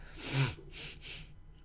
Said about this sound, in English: So I apologize for all the sniffles.